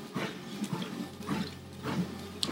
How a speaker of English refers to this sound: So, but I didn't, so I'll just drink some water instead to buy some time.